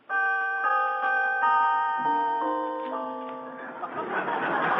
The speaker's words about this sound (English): Accepting Rudy Valley's gracious invitation, the Barrymore boys arrived the following night at the Valley homestead. Well, here we are, Lionel. Ring the bell, John.